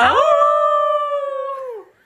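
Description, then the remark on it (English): A person imitates a wolf with one long, loud howl, holding a steady pitch for nearly two seconds before sliding downward and fading out. No talking. “I couldn't find the sound effect on my little app, but let's give a howl for our girl,”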